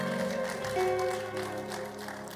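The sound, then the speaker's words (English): An audience claps steadily for a couple of seconds as a clap offering to the Lord at a church service, a dense, continuous patter of many hands over sustained musical tones from an instrument playing underneath. “Give the Lord a mighty clap offering in the house.”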